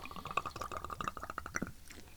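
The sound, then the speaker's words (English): Buffalo Trace bourbon glugs out of a tiny miniature airplane bottle, a quick, steady run of gurgling bubbles for under two seconds before it stops, with no talking. “For those of you who don't know, those are airplane bottles.”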